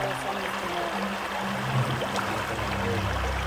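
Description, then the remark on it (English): Someone wades barefoot across the shallow Calore river, with steady rushing and splashing water filling the scene and a low murmur underneath. “We were forced to leave our shoes and to cross the water.”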